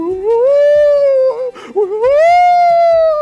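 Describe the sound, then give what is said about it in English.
A person howls like a dog, loud: one long wavering howl, a short raspy break, then a second rising howl, done by people who claim it is the Holy Spirit. Faint low thumps pulse underneath. “And I've heard some recordings where people are barking like dogs and claiming it's the Holy Spirit.”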